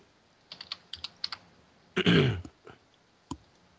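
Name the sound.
computer keyboard typing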